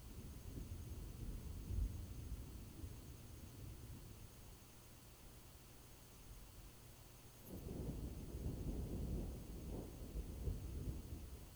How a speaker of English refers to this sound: You hear the storm before you see it. The rolling sound of thunder.